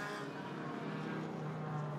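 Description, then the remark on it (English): A steady, droning rumble of race car engines rolling along together at a modest pace on their second formation lap behind the safety car, under a sky with a little cotton wool cloud, continuous, with a faint harmonic whine rising slightly near the end. “So the cars on their second formation lap behind our safety car.”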